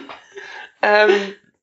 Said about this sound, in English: Oh, God, feel free to edit bits out where I'm just coughing.